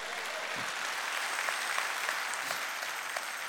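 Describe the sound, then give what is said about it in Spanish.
An audience at a Pentecost church service applauds Christ together, a dense, steady wash of clapping that holds at an even level for several seconds, with no voices standing out. “Dale un aplauso a Cristo.”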